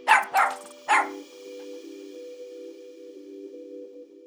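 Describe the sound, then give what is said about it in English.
A small long-haired Shih Tzu with a fresh haircut gives three quick, sharp barks in the first second, followed by a steady, drawn-out whine that hangs on quietly until the end. No one speaks. “He's a little Shih Tzu and they grow very long hair.”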